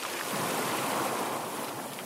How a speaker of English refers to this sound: Although I knew I hadn't been as an adult, the smell of the salty air, the sounds of the waves.